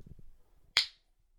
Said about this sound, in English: Check. Yeah, okay. Give me like a clap.